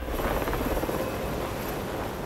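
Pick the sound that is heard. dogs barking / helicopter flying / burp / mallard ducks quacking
helicopter flying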